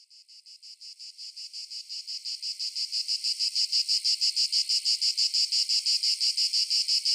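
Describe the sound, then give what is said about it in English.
A dense insect chorus of periodical cicadas buzzes steadily with a fast pulsing throb, swelling slightly louder over the first few seconds and then holding, with no voices. “About every 17 years, cicadas emerge from the ground in a strange life cycle experts have yet to fully understand.”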